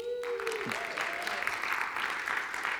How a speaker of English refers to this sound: Can I hear a good amen this morning? Yeah, you can give the Lord a great round of applause.